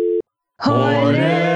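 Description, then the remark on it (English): A short electronic beep, a brief gap, then a loud, steady buzzing tone that holds to the end, like a phone line's busy signal after a hang-up. No voices. “We're going to hang up on you right now.”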